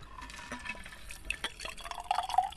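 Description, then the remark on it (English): A classic daiquiri cocktail made with rum and lime is poured into a glass, a short liquid pour with faint trickling and small splashy drips, rising slightly toward the end, with no one speaking. “So then, simple pour.”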